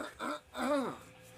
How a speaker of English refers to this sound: Had to clear my throat.